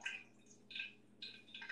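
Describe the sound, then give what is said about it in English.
Faint sizzling and crackling of pork chops frying, with grease popping in short hissy bursts that come and go over a low steady hum; no one speaks. “It does sound like grease popping now that I'm listening.”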